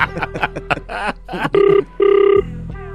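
A brief voice gives way to an outgoing call's ringback tone: two steady buzzing rings in quick succession, fairly loud, as if heard through a phone line.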